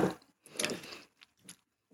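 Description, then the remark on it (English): Wet, squishy chewing of sugar bubblegum, a few irregular smacking bursts with short pauses between them, fairly soft and with no talking. “My teeth are rotting out because I'm chewing bubblegum right now.”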